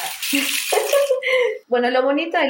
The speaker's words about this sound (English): While she was telling us this, Renata turned a large rain stick.